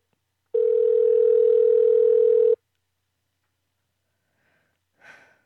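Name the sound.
telephone call ringing unanswered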